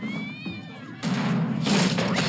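A single drawn-out cat meow sounds, then cuts off into a sudden burst of loud, rough noise, like a clatter or crash, that fills the rest of the moment.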